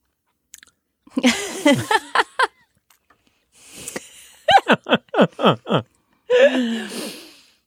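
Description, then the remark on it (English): Sounds of people drinking something thick after a toast: a few noisy gulps, then a quick run of about six rhythmic swallows with throaty, breathy noises, ending in a rough exhale. “So drink this and in 40 minutes you can get an accurate colonoscopy.”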